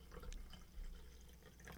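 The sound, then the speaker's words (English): Wine pours from an XL bottle into a glass in a soft, steady trickle with a few gurgling splashes, fairly quiet and with no talking over it. “Okay, I'll take a third glass too.”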